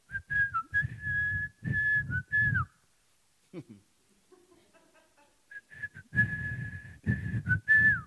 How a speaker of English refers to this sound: He may have been whistling, you know, he began to sing a tune when he left his father's house, whistled a tune.